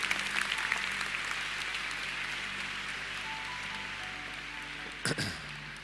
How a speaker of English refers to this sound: Come on, just give him a great clap. Good on you for coming up like that.